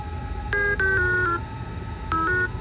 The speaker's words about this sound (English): How about this? Let's try one tone for yes, two tones for no. Okay, that's more than two, but...